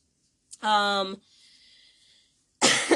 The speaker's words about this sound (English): cough moment.